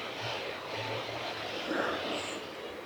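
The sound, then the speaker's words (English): A faint chainsaw drones steadily under a wash of outdoor noise, its low engine tone rising and falling in short uneven bursts. No one speaks. “Looks like someone's got a chainsaw out.”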